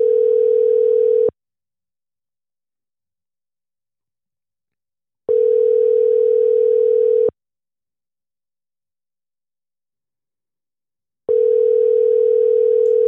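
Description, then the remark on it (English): A phone's ringback tone on an outgoing call to the Patriot Lawn Specialist business purrs in long steady bursts, about two seconds each, separated by roughly four seconds of silence, repeating three times clearly with no voices. “Let's see if he'll answer the phone for us today.”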